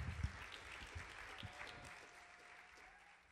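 An audience applauds with a dense, steady wash of clapping that holds for several seconds and eases off slightly toward the end, with no one speaking over it.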